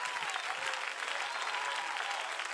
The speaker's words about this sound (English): Oh, clap your hands, give a voice.